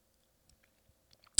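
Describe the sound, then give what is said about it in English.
A man lifts a cup and gives someone a sip of ice water: a few soft, scattered mouth clicks and small wet sounds, then a louder slurp at the end. No one speaks. “The man lifts a cup and gives me a sip of ice water.”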